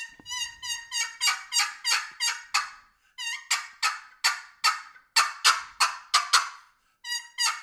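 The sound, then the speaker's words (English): A loud series of excited hen turkey yelps made on a turkey call, rapid raspy notes in quick runs broken by a couple of brief pauses and sharp cutting notes, with no talking. “So I'm going to do an excited hen yelp here with a few cuts in there.”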